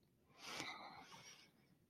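deep breathing

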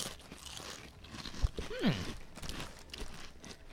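crunching barbecue potato chips

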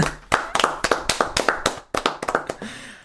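hand clapping

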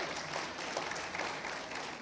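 audience applauding

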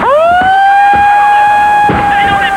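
siren wailing

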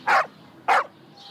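dog barking

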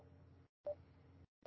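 telephone keypad dialing tones

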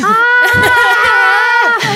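people screaming together

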